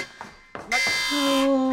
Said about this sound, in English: Is that one of the alarms? The alarm. We have alarms?